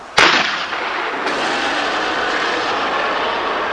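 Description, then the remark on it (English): A harpoon gun fires with one sharp, loud crack, followed by a steady, broad rushing hiss that carries on at an even level to the end, with no voices. “Grab the harpoon gun to the left of you.”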